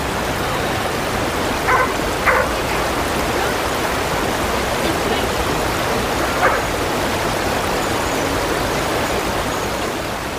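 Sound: flowing river water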